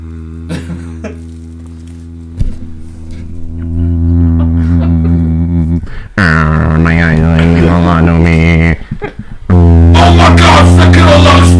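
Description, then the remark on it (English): A voice imitates a menacingly low hum, like graveyard fog, holding a deep, steady drone for several seconds before breaking into louder, rough, buzzing vocal bursts. “Do like a menacingly low hum, like graveyard fog.”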